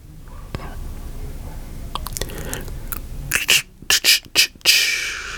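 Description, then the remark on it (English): A person attempts to imitate cricket chirping with breathy, hissy mouth noises, ending in a quick run of four or five sharp, crackly bursts. “I was trying to make a cricket sound, but I don't have that.”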